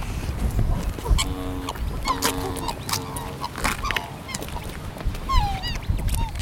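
A swan family of mother, father and cygnet honks back and forth in a triumph call, repeated nasal, trumpeting calls made while bobbing their heads, several overlapping bursts rising and falling over a steady low background rumble, with no talking.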